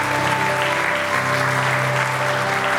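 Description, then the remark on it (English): An audience at a worship service claps together in praise to the Lord, sustained, dense applause that fills the room, steady and loud throughout with no clear pauses, over a faint background hum. “Give the Lord a clap of praise, would you?”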